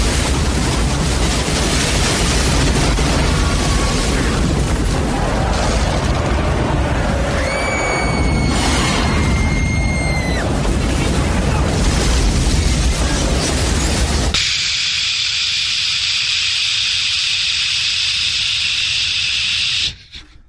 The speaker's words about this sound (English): He's traveling at a high rate of speed. He hits the curb. He's now almost airborne. He comes crashing down. He sideswipes a white Miata. He loses control of the vehicle. He slams into a security fence and crashes into the radio tower.